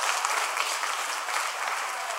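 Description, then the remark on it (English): A round of applause: dense, steady clapping that holds at an even, fairly loud level for a couple of seconds, with no voices over it. “A round of applause.”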